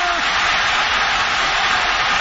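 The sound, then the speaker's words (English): A dense, steady roar of a stadium crowd at a football game during Marshawn Lynch's 67-yard touchdown run, in which he broke seven tackles. It is loud and unbroken for a couple of seconds, a wash of many voices with no single speaker standing out. “How about the crowd in the background of that?”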